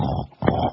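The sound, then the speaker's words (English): Two short pig oinks in quick succession, each a low, throaty grunt with a brief gap between them. “Little pig report.”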